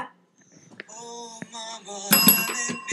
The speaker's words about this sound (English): Okay, put your hands on the table. Not close to the bell. The bell is closer to him than it is to Mom. No, now it's closer to Mom.